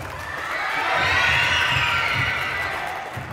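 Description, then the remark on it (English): A loud crowd cheers and shouts steadily at the Shepherd Rec Center in West Philadelphia as pro athlete Tobias Harris enters, with a thumping bass beat pulsing underneath and applause mixed into the roar throughout. “The cheers were loud. The music was bumping. The applause kept coming.”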